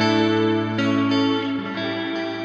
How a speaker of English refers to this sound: And that's nothing that crazy. It's just a little bit of Bucket Brigade delay and some reverb.